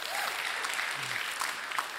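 An audience at Life Church applauds steadily, many hands clapping in a dense, even wash of sound that holds at a moderate level for the whole two seconds without pausing.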